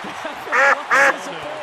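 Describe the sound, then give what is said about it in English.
Two loud, nasal honks from a goose or duck that appeared in right field during a baseball game at Dodger Stadium, evenly spaced about half a second apart, ringing out clearly over a faint, murmuring background. “The rally duck, rally foul? It might be a goose, actually.”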